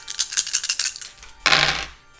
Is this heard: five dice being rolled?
yes